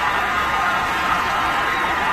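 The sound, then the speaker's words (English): A large stadium crowd roars and cheers in a dense, steady wash of noise, loud and sustained for a couple of seconds without any single voice standing out, as a cat falling from the second deck is caught on an American flag by men below. “And did they catch the cat then? Is that what the cheer was?”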